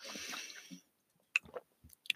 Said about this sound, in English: Hold on, I need some water. Got my little Hydro Flask here. I actually ordered this Hydro Flask from Amazon and I really love it. It's like this watermelon color. It's super pretty.